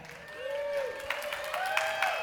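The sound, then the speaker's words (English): An audience claps steadily, a dense patter of many hands, with a few rising whoops or whistles from the crowd riding over the applause. “You're all clapping, but after what I'm going to say, she's not going to be.”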